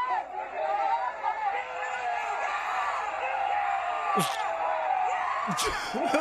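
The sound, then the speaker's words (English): A dense crowd chatters and shouts throughout as police throw a man to the ground, with scattered whoops rising above the din and a couple of sharp impacts near the end, all moderately loud and continuous. “Listen to the crowd pop when the police throw him to the ground, shatter all of his fucking bones.”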